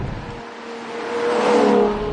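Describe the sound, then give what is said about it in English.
A Ferrari 812 GTS V12 engine revs up, its tone climbing and swelling louder for a couple of seconds before easing slightly, heard on its own with no talking. “That glorious V12 symphony just got even better”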